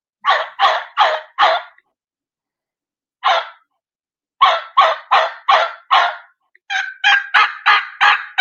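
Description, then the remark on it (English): A hen turkey yelps in answer in loud, raspy runs of four to six notes with short pauses between, the last run quicker and choppier, with no talking. “There's the hen answering.”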